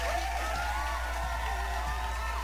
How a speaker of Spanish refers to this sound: Claro que sí, banda, un pinche aplauso.